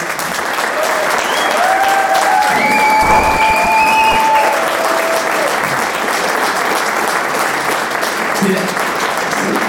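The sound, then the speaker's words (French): A sustained wash of audience applause for a guest being introduced fills the whole stretch, steady and loud, with whistles and cheers rising above the clapping around the middle. “Merci pour la main d'applaudissements.”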